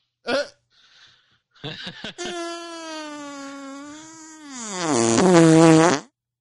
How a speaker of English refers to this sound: You get this fart.